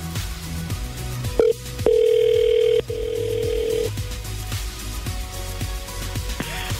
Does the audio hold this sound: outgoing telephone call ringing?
yes